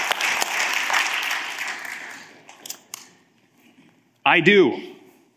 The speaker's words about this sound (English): Jacob Marks and Lydia Sally got married yesterday. And they're probably not here today. They're probably on their honeymoon. We can clap for them.